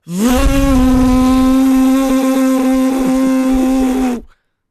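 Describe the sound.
A voice imitates the loud buzzing of a real drone, holding one steady, raspy droning note for about four seconds before cutting off abruptly.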